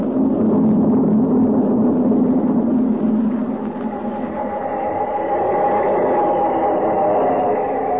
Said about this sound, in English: There's the train. Just pulling into a station.